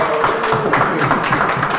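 A crowd at a community gathering in Laxey claps steadily in a round of applause, a dense wash of many overlapping hand claps at an even, fairly loud level with no voices standing out.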